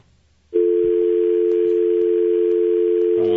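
A steady, loud telephone dial tone on a phone line that has been broken all day starts abruptly after a brief quiet moment and holds unbroken to the end, with no one speaking.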